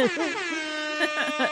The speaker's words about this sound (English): Hip hop air horns. Let me find the button.